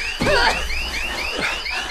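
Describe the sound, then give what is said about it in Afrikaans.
An alarm blares loudly with repeating electronic sweeps and warbling tones that cycle rapidly and continuously, with no voices present. “Ek kan nou sieke mama alarm afsit.”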